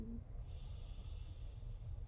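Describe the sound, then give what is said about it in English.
A single slow, deep inhalation through the nose during a grounding breathing exercise, soft, with a faint airy hiss running steadily for about two seconds and no talking. “breathing out, breathing in, breathing out, breathing in, breathing out, breathing in.”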